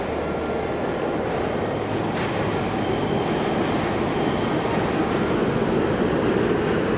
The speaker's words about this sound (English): But, oh, sorry, a train's coming.